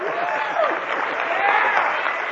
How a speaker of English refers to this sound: How about a round of applause for Robert Anton Wilson?